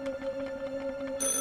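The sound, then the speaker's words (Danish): A telephone rings again, with a steady electronic tone, fairly clear and alone, and a higher-pitched chirp joins in near the end. “Den ringer igen. Og en gang til.”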